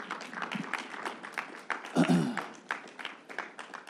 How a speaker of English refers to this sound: Now respond. Let's clap that up.